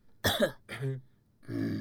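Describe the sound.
A voice imitates an audience member coughing in the back during a silent stage performance: three short, throaty coughs in quick succession, moderately loud, with a rough, scratchy texture and no other sounds around them.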